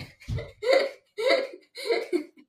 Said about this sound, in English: But she has the hiccups and can't sleep, so I'm going to go have her drink from the wrong side of a glass.